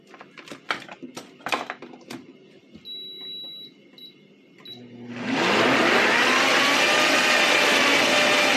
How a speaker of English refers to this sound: I'm starting the blender, just so you guys know Beastie's about to go here.